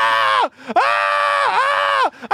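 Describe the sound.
A voice imitates a woman in a wheelchair who throws herself onto the floor screaming in pain: two long, loud, wavering wails broken by a brief gasping pause, strained, with no other talking.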